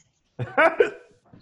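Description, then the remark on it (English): One drawn-out burp, low and croaky with a voiced, rumbling quality, lasting under a second, followed by a brief faint sound. “I'm burping now.”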